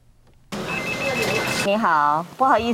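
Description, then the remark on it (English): A telephone rings at a pharmacy with a thin, pulsing electronic tone over busy background noise for about a second, then a voice starts speaking. “This pharmacist has been answering the phone all morning, responding to inquiries about home-use rapid test kits.”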